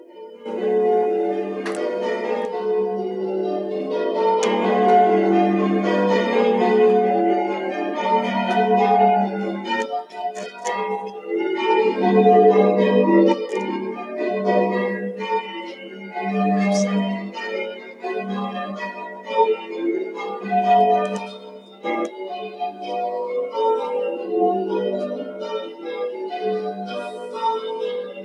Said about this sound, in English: And to start our worship this morning, here is a recording of some of the church bells from St. Mary's in Richmond.